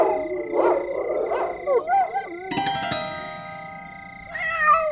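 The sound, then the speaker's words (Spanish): A cat meows several times, with short wavering cries, before a sustained ringing tone takes over, and one last brief meow rises near the end. “Sí, gatito. A mí también me inquietan esos ruidos.”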